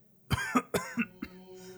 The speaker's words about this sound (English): grabs a handkerchief from her pocket and coughs into it.